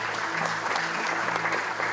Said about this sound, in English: You can clap that in. That couple deserves it.